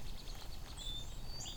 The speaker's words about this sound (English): There's the seep, there's the blip. Sometimes they chain the blips together, kind of a blip, blip, blip, blip, blip, blip. Like that. These are mostly white-throated sparrows, so there's a few song sparrows in here.